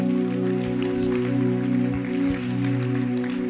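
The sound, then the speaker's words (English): A church audience claps for Jesus during a service in a steady, dense patter over a sustained, droning keyboard chord that holds throughout; the clapping is fairly soft and blends into the continuous musical tones. “Your clap is, your hand clap is very weak.”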